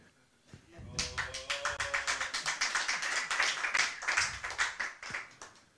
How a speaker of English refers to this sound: All the people gathered there began to clap in great ecstasy. See? Clapping.